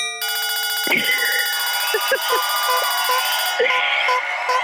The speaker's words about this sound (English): Like everyone in the world is clapping for you and apparently like squeaking a clown horn or something. Yes. Like that's the weirdest noise ever. Cowbell, throw a cowbell in there.